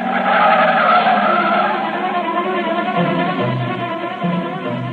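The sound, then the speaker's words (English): A car speeds past with tires squealing loudly, a sustained screech over a revving engine that stays intense for several seconds before easing slightly. “You keep saying things you shouldn't, and she lashes out with an answer, and before you know it, you've stormed out of the house, and you're taking it out in the car.”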